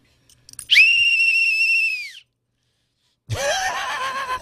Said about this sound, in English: It says, don't you see, Department of Homeland Security on it. So I blow this whistle.